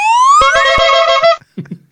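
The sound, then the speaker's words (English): A buzzy, nasal electronic duck quack from a sound button swoops upward, then holds a steady rasping tone for about a second before cutting off, followed by brief faint voices. “So he's being duck noise.”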